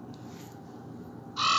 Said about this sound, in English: So this is what I heard, y'all, out the window. No, that's the raven. This the crow. You hear that?